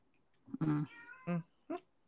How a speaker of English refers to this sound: I got a cat meowing in the background.